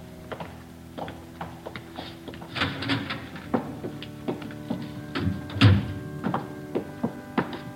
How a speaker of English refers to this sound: Yeah, what's that? Climbing stairs to a choir loft.